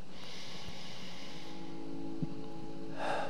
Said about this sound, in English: Will you just close your eyes? Take a deep breath in and let it out. Breathe in again.